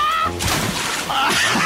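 A person walks the plank and plunges into the Swan River with a sudden broad splash, followed by a second of churning, sloshing water, with brief vocal sounds at the start and near the end.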